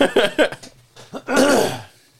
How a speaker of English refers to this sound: When we cough in unison, it's less editing.